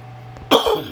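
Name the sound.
dry cough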